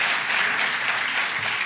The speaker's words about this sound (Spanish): Clap if you're going to get ready. Don't clap, because if you don't get ready, it doesn't matter.